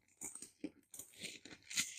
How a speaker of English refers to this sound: We should really, like, move away the mic because, like, they probably hear the fucking scratching of paper. Well, that's what they like. That it's like ASMR.